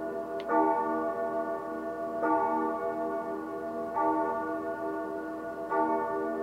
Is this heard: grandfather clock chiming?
yes